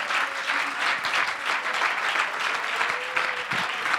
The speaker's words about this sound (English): There is nothing impossible with my God. Give the Lord a hand and clap of praise.